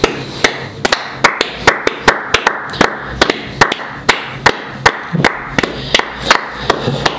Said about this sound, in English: You know how Mr. Beast does 24-hour challenges? I bet you no one's ever clapped for 12 hours straight, so I'm going to do this in your podcast. No, I'll keep going. You tell me when to stop, because I'll do it.